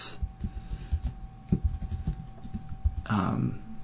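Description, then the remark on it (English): Rapid, irregular keystrokes clatter on a computer keyboard, moderately loud, with a steady faint hum underneath and a brief burst of louder noise near the end. “So there's some typing sounds, and I just want to hear.”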